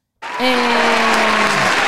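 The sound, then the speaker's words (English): A canned applause sound effect, played from a clap button, bursts in abruptly and stays loud and steady: a dense wash of clapping with some crowd cheering mixed in, continuous throughout. “Let me wait for the crowd to stop going crazy.”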